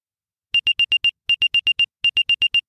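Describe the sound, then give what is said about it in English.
A quarter-sized AirTag plays its unknown-tracker alert, the sound for an unknown AirTag that has been moving with you over time: three quick bursts of five sharp, high-pitched electronic beeps each, with brief pauses between bursts, loud with no voices. “When an unknown AirTag has been moving with you over time.”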